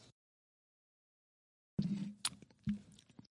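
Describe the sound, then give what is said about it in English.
After a moment of silence, someone takes wet sips of Fegley's Brew Works En Route, a 5% saison ale brewed with fresh ginger, two short bursts of slurping and mouth noise with a brief pause between them. “let's get a little sippy sip here.”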